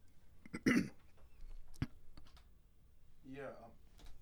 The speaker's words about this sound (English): Yeah, sorry about that. I don't have a dump button over here, and I had to clear my throat.